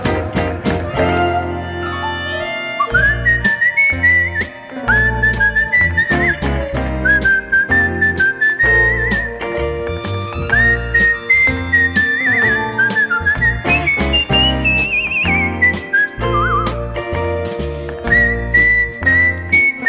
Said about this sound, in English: Nice whistling.